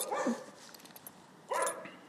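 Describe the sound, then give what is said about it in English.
A dog named Louis barks twice during dog training, with a short pause between the two sharp yips; faint background noise fills the gap. “That's a good dog.”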